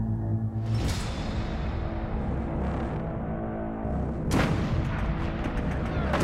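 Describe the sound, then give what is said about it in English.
A heavy Marine artillery and mortar barrage pounding Sugarloaf Hill on Okinawa rumbles continuously, with sharp booming blasts at the start and again near the end over a dense, low roar of shelling. “A thunderstorm of Marine artillery and mortars pound Sugarloaf, driving the defenders back underground.”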